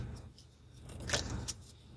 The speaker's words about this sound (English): I'm going ahead. I'm shuffling. I'm using my I am deck.